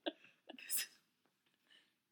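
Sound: burp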